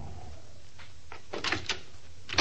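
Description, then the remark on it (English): A parked car's door opens and shuts on a city street at 4:15 in the morning, with a few sharp clunks and latch clicks over a quiet background hum, ending in a firm thud. “I got out of my parked car as Frankie Cobbler came darting down the street.”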